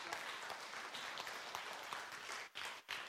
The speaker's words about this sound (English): And I want you to understand, come on, that's all right, you can clap.